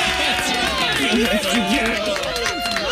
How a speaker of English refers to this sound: All right, so representing for Satellite Beach. Everybody's clapping for you.